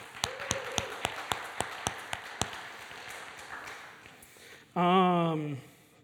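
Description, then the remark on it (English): Applause from an audience clapping for the young people: about a dozen crisp, evenly spaced claps in a steady rhythm for a couple of seconds, then quiet, followed by a brief loud vocal call near the end. “So I think we should clap for the young people.”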